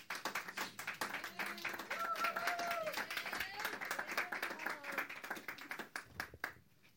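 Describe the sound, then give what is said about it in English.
A church audience applauds with dense, steady clapping that holds for several seconds, voices calling out and cheering over it before the clapping thins and fades. “Yeah, round of applause, please.”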